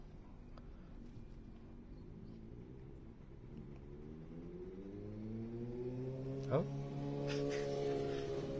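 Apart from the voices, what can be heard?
motorcycle engine revving past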